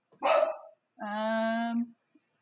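A dog barks twice, close and loud: first a short, rough woof, then a longer, drawn-out tonal bark that holds steady for about a second. No one talks.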